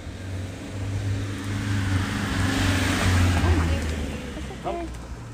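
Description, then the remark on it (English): A fast car roars past, its engine drone and tyre rush swelling to a loud peak midway before fading off. “That was a really fast car.”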